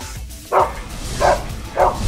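A dog barks three times at a steady, unhurried pace, each bark short and fairly loud against a faint background hum, with no one talking.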